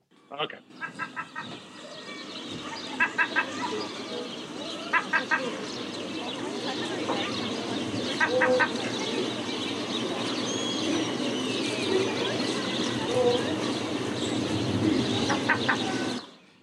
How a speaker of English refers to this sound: All I can hear is a small child going. That's not a child. That's a seagull. Oh right, that's Sid, is it? Right. Yeah, it's Sid the seagull.